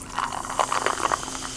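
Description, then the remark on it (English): Mountain Dew soda pours in a short, steady stream, with a bubbly, fizzing hiss that crackles unevenly for under two seconds. No one speaks. “You want to pour us a little?”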